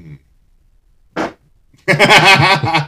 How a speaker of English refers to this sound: That was bussin. That fart brought to you by BD Bidets or BO Bidets. BO Bidets.